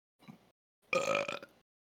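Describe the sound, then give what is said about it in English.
A short, soft burp is followed by a louder, drawn-out belch with a raspy, throaty tone, with no talking. “Follow if you can burp.”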